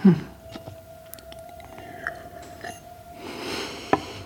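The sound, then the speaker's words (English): Someone takes a quiet sip of water from a glass, with soft wet mouth clicks and a swallow, over a faint steady hum and a brief rustle near the end. “Just relax. Have another sip of water.”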